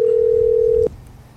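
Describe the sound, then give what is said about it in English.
A steady electronic telephone tone hums for just under a second, like a single ring of an outgoing call, then cuts off abruptly, leaving quiet background. No one speaks. “I know somebody's been waiting for this phone call, so let's see if she picks up the phone.”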